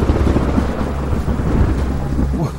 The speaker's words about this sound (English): a few hours later, Jenny and I were awoken by an earth-shattering thunderstorm.